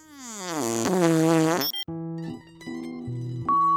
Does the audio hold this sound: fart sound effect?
yes